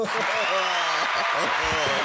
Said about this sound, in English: Yeah, where's the applause track? The applause track. God damn it, I moved away from it. I moved away from it.